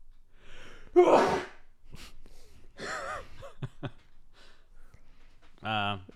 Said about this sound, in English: if you're going to say Gesundheit, you don't deserve it.